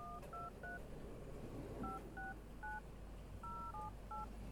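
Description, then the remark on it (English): A telephone being dialed, then ringing: about ten touch-tone beeps in three quick bursts, each tone short and clear over a low steady background hum, with no voices. “It's ringing.”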